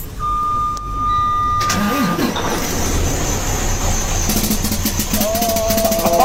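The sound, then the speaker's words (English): A truck engine starts up and runs loudly, with a fast, buzzy rattling clatter growing stronger toward the end, like a snare roll. “Customer states truck sounds like a snare drum.”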